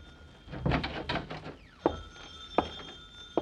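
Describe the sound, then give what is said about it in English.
A telephone rings with a steady, high-pitched bell tone that starts partway through, following a burst of clattering knocks and thumps, with a few sharp bumps over the ringing. “Uh-oh, the phone.”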